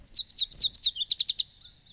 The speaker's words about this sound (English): Is that a mating call? Yeah, that's a male yellow warbler, I think.